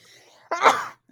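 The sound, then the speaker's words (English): A single sudden, fairly loud sneeze bursts out after a moment of quiet, breathy buildup, ending abruptly with a brief voiced tail and nothing after. “Bless you.”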